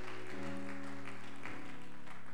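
An audience gives God a double clap over a sustained organ chord, the hand claps fairly soft and scattered against the steady low tones, with no voices.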